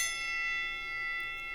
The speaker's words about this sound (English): And then you come back and tell me if that bell is valid.